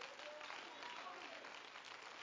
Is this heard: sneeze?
no